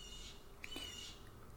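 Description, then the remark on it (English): A single faint blue jay call, a short thin whistle outdoors at a window fitted with an air conditioner, rising briefly above a steady low background hum with no talking. “What is that? Is that a noble eagle? It's a blue jay.”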